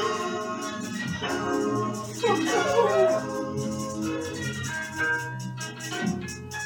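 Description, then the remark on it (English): Ethereal bell tones shimmer in the background of a dense, sustained music track, ringing softly and steadily beneath layered instruments at an even, moderate volume. “The bells in the back? As ethereal.”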